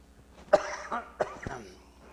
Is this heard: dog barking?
no